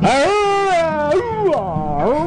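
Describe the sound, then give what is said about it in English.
A loud, old-fashioned car horn honks with a buzzy, swooping tone, sliding down and back up in a few quick blasts. “That's the old time horn.”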